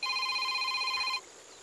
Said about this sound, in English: I told you to silence your phone.